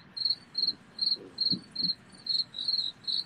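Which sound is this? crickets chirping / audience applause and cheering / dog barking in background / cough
crickets chirping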